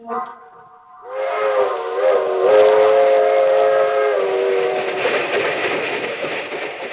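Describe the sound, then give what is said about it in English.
A train whistle sounds in a short burst, then a long, loud, steady harmonic whistle blows over the broad rumble of a passenger train running on the rails. “That train is the Southeast Limited. See it? Long, sleek, and powerful, clicking off the miles and the humming rails.”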